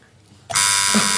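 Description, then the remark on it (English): A quiz show buzzer blares suddenly as a panelist buzzes in after a moment of quiet, a loud, harsh, sustained electronic tone rich in high buzzing overtones that holds steady to the end. “Catherine says a fact, I buzz in, she tells me it's true.”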